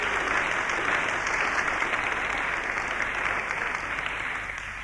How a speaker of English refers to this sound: give him a clap.